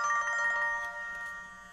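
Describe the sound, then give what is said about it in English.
A mobile phone ringtone plays a bright, melodic electronic tune with steady sustained tones, moderately loud, fading slightly toward the end with no talking. “See, this is why I need a new phone. I turn it off, and it just refuses to cooperate.”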